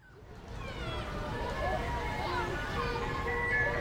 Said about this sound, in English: Oh man, the ice cream truck is coming!